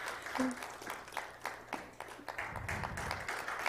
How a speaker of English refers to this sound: Can we have a round of applause for her as she comes up?